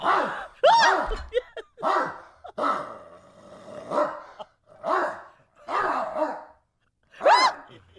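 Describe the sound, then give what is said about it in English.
A dog barks repeatedly and loudly, about seven or eight sharp barks in an uneven rhythm, with some growly, drawn-out barks among them and no other sounds. “Sure, you hear that dog back there? Yes! That dog was letting him have it.”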